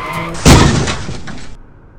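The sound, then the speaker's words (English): A sudden, loud car crash as a car hits a parked Mercedes: one heavy impact with a crunching, shattering burst that rattles on for about a second before fading. “We just crashed.”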